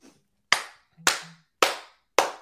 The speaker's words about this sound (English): We're getting the baby face clap going.